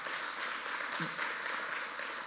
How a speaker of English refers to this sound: but before that, can we just give a huge, huge round of applause to your pastoral leadership and the way that they've taken care of me and my wife?